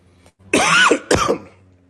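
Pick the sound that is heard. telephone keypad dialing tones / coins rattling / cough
cough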